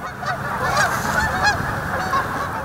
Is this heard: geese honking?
yes